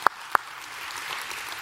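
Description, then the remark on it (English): Two sharp, separate claps ring out, then a soft, steady patter of audience applause for God continues at low volume with no voices. “And so we'll applaud him as I will applaud him.”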